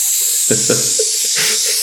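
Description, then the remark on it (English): Butter frying in a frying pan: a steady, bright sizzling hiss that holds throughout, with a few brief low vocal murmurs rising over it partway through. “Butter frying in a frying pan.”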